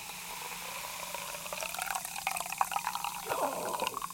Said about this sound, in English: Pour of wine.